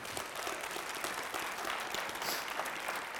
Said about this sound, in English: Can I have it? Let me hear it with a good clap offering if you agree.